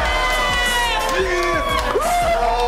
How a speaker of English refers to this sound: What an emotional moment for the Dayton Flyer. Getting a round of applause from Adam Silver.